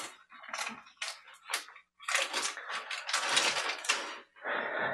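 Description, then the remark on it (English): Crackly rustling of a paper backing being peeled back from a round tub, coming in short irregular bursts before a longer, steadier tearing stretch and a final softer scrape, with no voices. “And there is a paper thing to peel back.”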